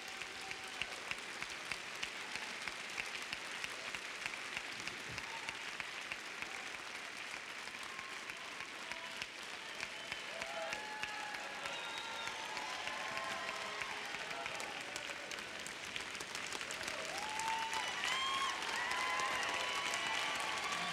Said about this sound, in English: No, you guys don't need to do that. No. No. No, man, I'm clapping for you guys.